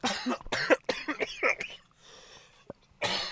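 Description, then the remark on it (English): Several harsh coughs from people in a cold car come in quick bursts, a pause with faint rustling and a small click, then another loud cough at the end. “I love this episode of us coughing and just chewing.”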